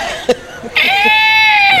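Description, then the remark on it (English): A person lets out a loud, high-pitched squeal imitating a pig, held for about a second, preceded by a couple of short breathy grunts. “make you squeal like a pig.”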